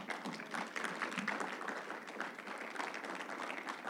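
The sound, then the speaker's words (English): An audience applauds together, a dense, steady wash of many hands clapping that fills the room for a few seconds at a fairly even loudness. “Let's clap that up.”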